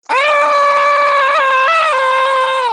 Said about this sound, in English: She just starts screaming. like screaming.